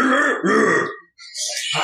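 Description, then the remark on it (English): A voice imitates a bear growling, rendering the Monty Python insult about a hamster mother and elderberries in 'bear language': two rough, guttural bursts, a brief pause, then a higher raspy snarl trailing off. “Your mother was a hamster and your father smelt of elderberries. Which in bear, of course, would be...”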